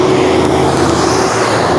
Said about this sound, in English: That was a big truck.